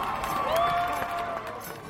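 A crowd cheers steadily for a couple of seconds after a police officer takes a knee with them, with a dense wash of voices and a few sustained, rising shouts or whoops standing out above the noise.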